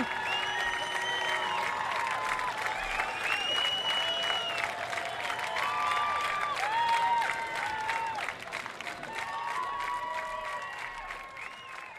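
A large outdoor crowd at the Newport Folk Festival in Newport applauds steadily and cheers in the rain, with whoops and whistles rising over dense clapping that swells in the middle and continues throughout, fairly loud.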